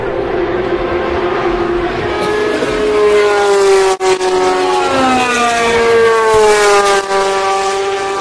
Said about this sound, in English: Three GTE Pro-Am cars there.